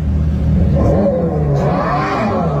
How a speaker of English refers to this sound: It's pretty good. It's very accurate. Something else. They're calling it a battery electric vehicle exhaust noise.